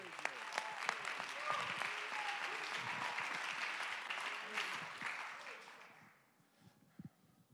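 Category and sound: crowd, audience clapping hands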